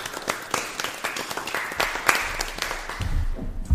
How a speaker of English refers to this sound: Okay, thank you. Step for yourselves, let's clap for y'all.